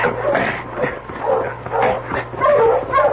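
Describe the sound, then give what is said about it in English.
A sled dog barks excitedly in a rapid, uneven series of loud barks and high yips, filling the whole moment with a steady hum beneath. “stop that dog, dear.”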